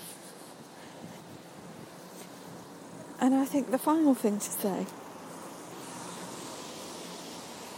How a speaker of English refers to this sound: It's got a bit windy now, so I'm not sure how that's affecting what you're hearing, but anyway.